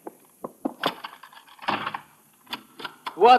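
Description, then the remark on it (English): A door is unlocked and opened: a run of sharp metallic clicks and clunks, a louder scraping rattle as it swings, then a few more knocks and a brief voice at the end. “Franz, open that door immediately.”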